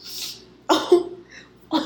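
A deep, congested sniffle from a sick person: an airy intake, then two loud, wet nasal snorts a second apart, thick and phlegmy with no talking.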